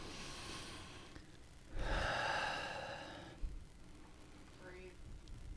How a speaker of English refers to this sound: I'm breathing.